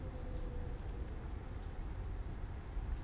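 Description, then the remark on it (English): A streetcar rolls past on a street with a steady, heavy low rumble that holds at the same level throughout, with a faint whine early on and a few light metallic clicks on top. “And why is my street so loud all of a sudden? There are never cars on the street.”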